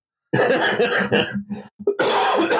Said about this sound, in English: Excuse me. Man, whoever gave you that cough is horrible.